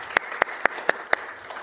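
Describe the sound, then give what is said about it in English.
Applause heard as five sharp, evenly spaced claps in a steady rhythm, crisp and fairly loud, with a faint hiss between them and no voices. “Can we just give a round of applause for that beautiful little girl?”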